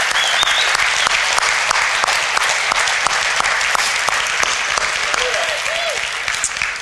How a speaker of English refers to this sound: will you just get up out of your seat and just walk down here to the front? Let us recognize you, see you. We're going to give them a clap. Yeah.